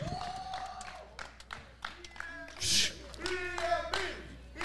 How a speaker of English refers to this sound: You hear it. Clap for me, bitch. Clap for me.